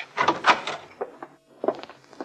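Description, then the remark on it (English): A hotel room door is unlocked and pushed open, with a cluster of metallic clicks and rattles followed by a brief pause and a few more knocks and scrapes as it swings. “I suppose you're right. Guess I'd better unlock it.”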